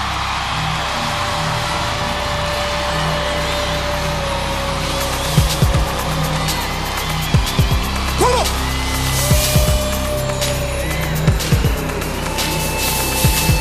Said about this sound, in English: Let me hear you make some Holy Ghost crazy noise right now. Let me hear.